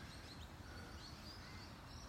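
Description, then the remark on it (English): Faint birds chirp and call intermittently at sunrise over a steady low outdoor rumble, with no one speaking. “I'm enjoying the sunrise, the birds”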